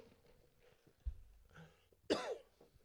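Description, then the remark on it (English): A single sharp, loud cough bursts out, preceded by a low thump and some quiet breathing or throat noise. “Hold on, fire cough. I got to.”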